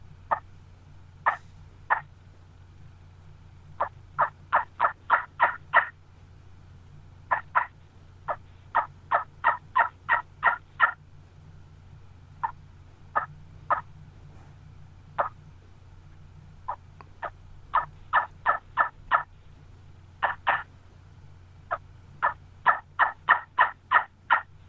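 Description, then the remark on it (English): A handmade turkey call, built strictly from old gobbler bones, sends out sharp, high yelps in quick rhythmic runs of several notes, clear, pausing between series over a faint low hum, with no talking. “This first one I'm going to play here, this is the first one that I built. And I'll tell you, it's strictly out of old gobbler bones”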